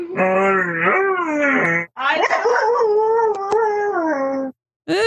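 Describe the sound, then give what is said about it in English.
A husky mix dog, prompted to say "I love you", gives a long, wavering howl-like moan in two drawn-out phrases with rising and falling pitch, loud, sounding almost like it's trying to form words. “here is a husky mix named Brutus the Goofus being prompted to say, I love you”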